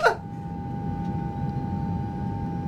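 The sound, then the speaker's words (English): An airplane landing effect: after a brief sharp burst, a steady low engine rumble with a sustained high whine drones on evenly at a moderate level, with no one speaking. “I think it's time that we take this baby down.”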